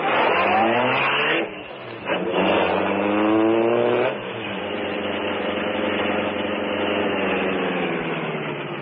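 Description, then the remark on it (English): A car engine revs loudly, its pitch climbing through a couple of bursts, then settles into a steady, sustained roar as the Green Hornet's sleek black car pulls away. No one speaks. “that the sleek black car of the Green Hornet was housed.”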